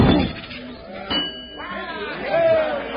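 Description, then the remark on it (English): A man swings a hammer at a fair strength tester, a single sharp strike setting off its bright, ringing bell on the first try, which hangs and fades over the next second or so, with indistinct crowd chatter and voices murmuring in the background. “He rang the bell on the first try.”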